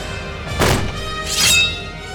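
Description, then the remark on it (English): Two heavy impacts as Theseus kicks open the doors to a chamber: a broad, booming thud first, then a second crashing burst with a brighter, ringing edge, over a steady low hum. “Theseus ran to the doors, kicked them open, and raised his blade once more.”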